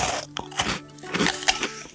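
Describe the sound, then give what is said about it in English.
Crisp crunching as honey nuts are chewed and munched, several irregular bites crackling in quick succession with no voices. “And they nibble and they munch with a chew,”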